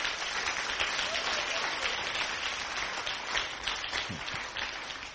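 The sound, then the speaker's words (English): A crowd applauds steadily, many hands clapping in a dense, continuous wash of sound that holds at an even level throughout, with no voices standing out above it. “I thought you'll be clapping by this time.”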